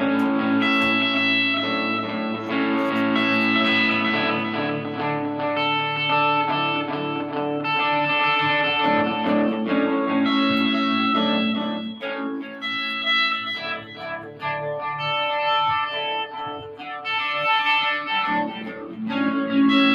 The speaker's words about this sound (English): the maestro, who's going to play music for you right now.